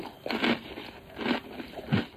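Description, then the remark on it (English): Crisp crunching of someone chewing a fortune cookie, three loud bites spaced about a second apart with smaller crackles between, no talking. “I can't believe you sit there crunching away.”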